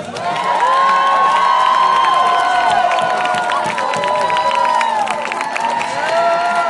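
A loud crowd and paparazzi cheer and shout continuously at a red carpet as arrivals step out of a car and are introduced, with high-pitched whoops and yells layered over a dense roar of voices, plus scattered clapping, sustained throughout without a break.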